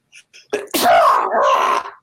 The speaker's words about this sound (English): But, man, like, I'm about to sneeze.